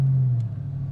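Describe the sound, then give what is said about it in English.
A car engine rumbles with a steady low drone that shifts slightly in pitch partway through as the car, parked next to a swimming pool at a house, pulls away. No one speaks. “Okay, now to vacate before the owner of this house gets curious as to why there's a car parked next to a swimming pool.”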